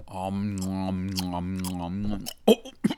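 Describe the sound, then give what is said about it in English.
A long hummed "mmm" of enjoyment, followed by a few moist, smacking chewing sounds of someone chewing a soft chocolate-covered Built Bar protein bar. “I'm just chewing on one of them old yummy Built Bars.”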